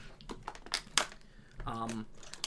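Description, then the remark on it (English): A plastic water bottle crinkles in a quick run of sharp, crackly pops, followed by a brief squeaky, tonal rub against the plastic. “Sips tea. Water bottle.”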